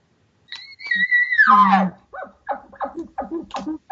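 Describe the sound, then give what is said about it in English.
A male animal's call to a cow: a high, thin whistling note slides down into a rough low groan, then about six quick rhythmic grunting chuckles follow, fairly loud with no talking. “If he wanted to chuckle a little bit, he might go.”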